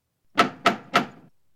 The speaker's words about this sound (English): She gave a start when she heard a knock at the door.